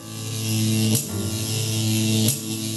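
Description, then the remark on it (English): A loud, steady electrical buzz hums as a laboratory machine is powered up, broken twice by sharp zapping crackles before droning on. “Fly Guy turned on the power.”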